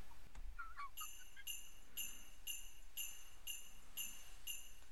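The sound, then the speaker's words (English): Sleigh bells in a Christmas song jingle in steady, evenly spaced shakes, about two per second, bright and high-pitched, over a soft, low musical backing with no singing. “God, so many sleigh bells.”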